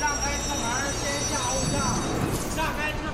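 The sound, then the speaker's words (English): A subway train on the newly opened fifth subway line in Beijing, China, runs with a steady, loud rumble and a thin high metallic whine, muffled voices murmuring faintly beneath the noise throughout. “This month, the government opened its fifth subway line, cutting through the centre of the city and heading out to the suburbs.”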